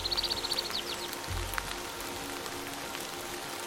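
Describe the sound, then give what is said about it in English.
Water drops falling from leaves patter steadily in a rainforest, a soft continuous hiss of dripping with a few sharper splashes, and a quick run of high bird chirps at the very start. No one speaks. “Rainforest Waterdrops”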